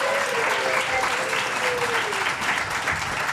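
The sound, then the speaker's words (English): A conference crowd applauds as the first guests, the worship leaders, come up, a dense wash of many hands clapping at an even loudness throughout, with faint cheering or voices mixed underneath. “yeah, give them a round of applause. Give them a hand.”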